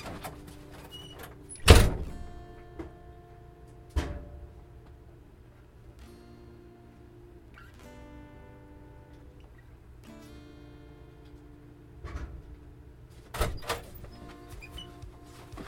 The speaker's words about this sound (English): I forgot to close the lid on the washing machine.